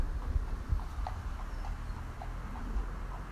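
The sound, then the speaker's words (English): Horses' hooves clip-clop in a steady, regular rhythm, fairly faint, over a low outdoor background in the countryside, with no one speaking. “You can hear them in the country because you can hear the horses.”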